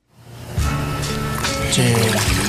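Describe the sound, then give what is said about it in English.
Warm bath water trickles and splashes steadily, fairly loud and continuous, with some humming, voice-like tones mixed in over the flow. “Damn, baby, that water feels so good.”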